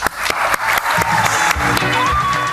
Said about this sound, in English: He magicked away around $5 billion of shareholder and investment money, and they bring him up on stage and the crowd goes wild.